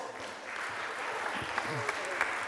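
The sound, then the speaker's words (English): Steady audience applause for a volunteer who said a prayer, a dense wash of many hands clapping at moderate volume for a couple of seconds, with a few sharper individual claps standing out near the end. “Round of applause.”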